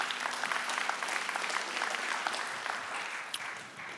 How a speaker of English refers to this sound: Come on, can we clap our hands for God's word?